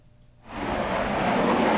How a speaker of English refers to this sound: The advanced jet trainer prototype soars into the sky for a 15-minute test flight. It completed its mission without a hitch. The Brave Eagle A2 prototype, numbered 11002, completed its first test flight on Christmas Day.